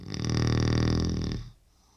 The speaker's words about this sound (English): Has Dad always snored? Only when he sleeps. How long have you been married now? 41 years. And he's snored like this for how long? 41 years.